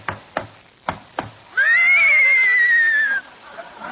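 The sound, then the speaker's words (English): Four sharp hoof clops ring out in quick succession as a horse, one of Crosby's horses ridden by Dorothy Lamour, comes into the studio, then a loud, sustained horse whinny with a wavering pitch rises up and trails off. “Hey, Abbott, there's somebody riding into the studio on a horse. Whoa, Crooner!”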